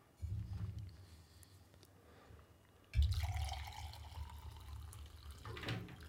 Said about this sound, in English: I'm getting a little better at this pouring thing.